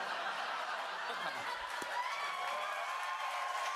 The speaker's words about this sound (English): So the crowd's cheering because he puts on his aviators, saying he resents the hell out of the Dark Brandon meme.